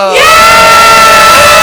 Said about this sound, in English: So let's all give a gay pimpin' old-fashioned classic scream. Right.